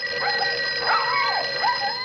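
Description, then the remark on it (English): A telephone rings steadily and shrilly for a couple of seconds in a sheriff's office, with high whimpering yips from small dogs rising and falling over the ring. No one speaks. “walks to the phone.”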